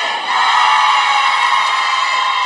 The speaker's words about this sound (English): In Jesus' name. And everybody screamed amen.